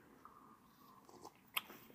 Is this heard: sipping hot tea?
yes